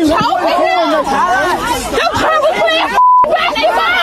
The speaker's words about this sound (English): The crowd reacting to a white police officer on top of a black teen with what appears from the cell phone video to be his arm wrapped around the young boy's neck. This disturbing scene this time is in Baton Rouge, Louisiana.